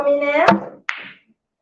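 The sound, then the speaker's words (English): A pool cue strikes a ball with a sharp click as a voice trails off, followed a moment later by a second crisp clack of pool balls colliding. “Get the green out. Oh, yes. Great. I did half of it. Great shot. You've left me a really easy black there.”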